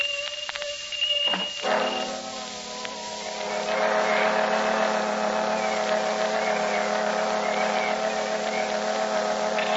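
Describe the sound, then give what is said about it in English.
Fire engines roar past with sirens, a loud, steady mechanical drone under wavering wailing tones that swell after a couple of seconds and continue throughout, with no voices. “Oh, there go the fire engines.”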